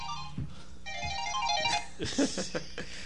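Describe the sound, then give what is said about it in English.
A phone message notification alert chimes in a short run of bright, rising electronic tones, clear, followed by some rustling and thumping noise. “You've got mail. Forgot to turn on vibrate.”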